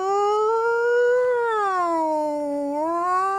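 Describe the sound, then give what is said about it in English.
A single voice imitates a two-tone fire engine siren, holding a higher wailing note, sliding down to a lower one, then rising again. The sustained, steady tone is fairly loud, with no talking over it. “How are we going? Nino, Nino. Yeah, pretty much like that.”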